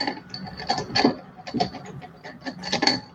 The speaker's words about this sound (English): The sound of me digging through a bunch of metal dice.